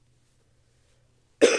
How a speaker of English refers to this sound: I'm sorry for the coughing sounds, y'all. If you're not into coughing sounds, I'm just really congested.